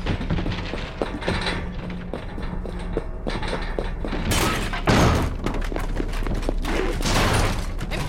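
Rifle and pistol gunfire from defenders in a lobby, shooting at the front door, crackles in a dense, continuous volley, shots overlapping into a loud roar with a few heavier bursts of rapid fire toward the middle and end.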